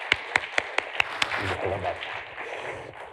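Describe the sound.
Six evenly spaced claps ring out, then a crowd breaks into a steady wash of applause that holds at moderate loudness, with faint voices mixed into the clapping.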